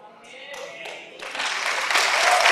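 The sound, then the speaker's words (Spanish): A church audience applauds their pastor, the applause swelling steadily from a scattered start into a dense, loud wash of clapping, with some voices mixed in at the beginning. “Aplauden porque es su pastor, ¿verdad?”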